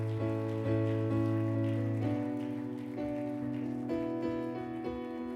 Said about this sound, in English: Can we give the Lord a hand clap of praise today? Amen.